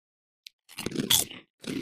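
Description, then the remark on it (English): A sharp little click, then loud, crackly crunching as a crisp snack is bitten and chewed, pausing briefly before another burst of crunching begins. No one speaks. “I mean, it's I eat crunchy.”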